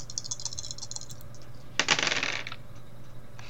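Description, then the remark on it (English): Four dice clatter onto a hard surface, a scatter of light clicks followed by a short, busy burst of rattling as they tumble and settle, with no talking. “So, total of 4 dice.”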